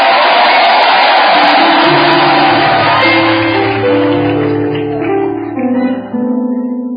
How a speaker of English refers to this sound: Are you clapping your hands for Jesus? Are you giving the Lord a shout of victory?